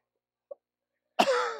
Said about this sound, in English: I can cough now thinking about it. I hacked, and I coughed, and I sputtered, and I tried everything to get that fly up out of there.